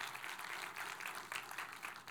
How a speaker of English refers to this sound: by just a round of applause. If you've seen a Star Wars movie, just clap for a second